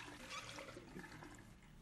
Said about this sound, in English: You know, it's better to just leave the water running.